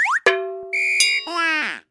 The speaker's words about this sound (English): and that's a big bet. Sound the big bet alarm.